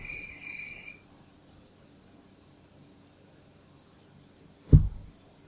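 insect, crickets chirping at night

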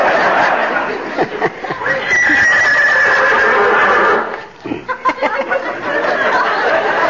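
animal, horse whinnying

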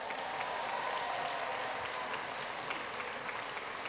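crowd, audience round of applause

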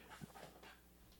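animal, dog panting and whimpering

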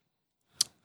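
dice being rolled

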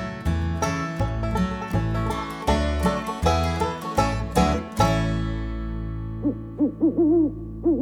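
bird, owl hooting

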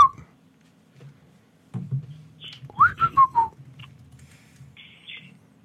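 bird, pet bird whistling

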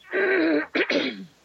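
human body sound, throat clearing

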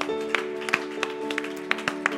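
crowd, audience applause

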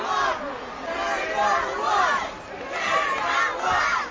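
crowd, arena crowd chanting

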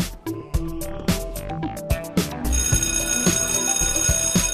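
signal or alarm, school bell ringing

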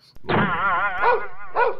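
animal, dog barking and whimpering

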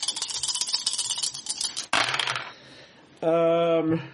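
household object, dice being rolled

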